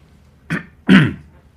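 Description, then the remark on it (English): Two coughs in quick succession, a short one followed by a louder, longer, throatier hack, with no talking around them. “That was a cough, not a rap, but you know what I mean.”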